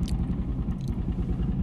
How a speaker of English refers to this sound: What the fuck was that? Somebody's souped up car is sputtering out.